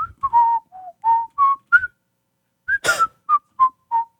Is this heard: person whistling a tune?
yes